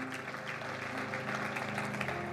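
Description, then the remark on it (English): A crowd applauds with steady, dense hand clapping that fills the whole clip at a moderate level, with a faint low hum of music or murmur underneath, giving the Lord a hand clap for those who said yes to Jesus. “Come on, let's give the Lord a big hand clap for those that said yes to Jesus today.”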